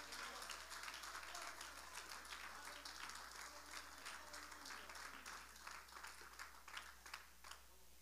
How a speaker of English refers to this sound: If you believe that, clap your hands in this place.